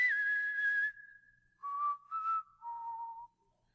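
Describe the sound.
A person whistles a short, clear melody, starting on a long high held note, then dropping to a few lower sustained notes in a slow, dramatic Wild West standoff-style tune.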